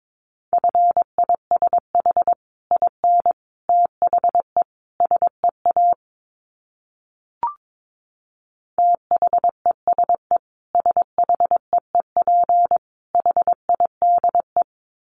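Morse code sent at 22 words per minute: a single steady mid-pitched tone keyed in quick dots and dashes, two long runs split by a silent pause and a brief click. No voices.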